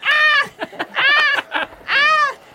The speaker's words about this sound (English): Just stabbed a chicken with the flame dagger, and it just happened.